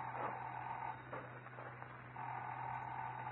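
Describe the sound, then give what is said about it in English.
A telephone rings in two steady, buzzing bursts with a short pause between them, fairly loud over a hissy, muffled background. “Say, isn't that your... Yeah, the phone.”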